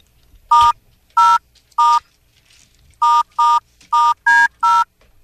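Eight crisp, loud touch-tone beeps of telephone dialing a call to restaurant Lake Cactus in the Congo: three spaced presses, a short pause, then five quicker ones, with one key sounding slightly higher in pitch than the rest.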